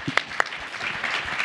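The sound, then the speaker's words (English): An audience applauds the panelists at the end of a panel session, a dense wash of many hands clapping at a moderate level, with a couple of sharper claps standing out near the start. “We're about out of time, so I'd love to get a warm round of applause for these amazing panelists.”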